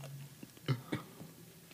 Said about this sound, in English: It gotta be pomegranate. It gotta be pomegranate because he's still chewing.